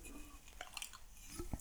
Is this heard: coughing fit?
no